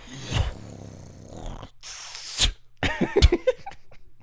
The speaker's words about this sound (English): why are you spitting in your hand right now?